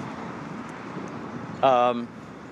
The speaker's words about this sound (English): It's wonderful out here in the streets of North Hollywood.